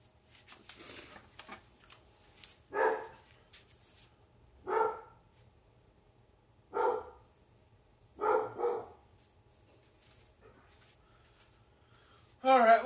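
A dog named Jack barks repeatedly, about six sharp woofs spaced a second or two apart, with one quick double near the end, clear against a quiet background.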